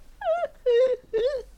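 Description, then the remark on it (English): A voice imitates an anguished whale with three long, wavering moans, each rising and falling in pitch, fairly loud with brief gaps between them and no other talking. “Anguished whale.”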